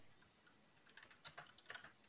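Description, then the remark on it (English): Someone types on a computer keyboard: a quick, uneven patter of crisp clicks, sparse at first and then bunching into a faster burst, with no voices. “Okay, I'll keep talking so we don't have to get you typing.”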